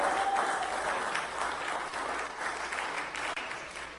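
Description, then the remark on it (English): A church audience on International Sunday claps steadily throughout, a dense wash of many hands applauding at a fairly even, moderately loud level, with no one speaking over it. “Why are you not clapping?”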